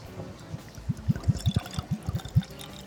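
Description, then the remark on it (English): Keeper's Heart whiskey, finished for 3 months in maple syrup barrels, glugs out of a bottle into a glass in a rapid series of hollow gurgles, about eight pulses in under two seconds, with no talking. “I can hear that in my earphones. Love that sound. Almost as much as the cork pop.”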